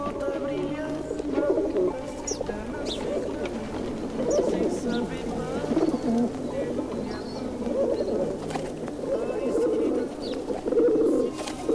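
Several pigeons coo steadily, their low throaty warbles overlapping in a continuous murmur, with a few faint higher chirps scattered throughout.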